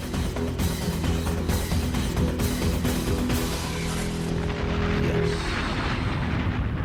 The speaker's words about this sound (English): Lovely explosion this morning.